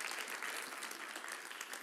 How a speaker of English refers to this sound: Thank you, guys. Clap for them.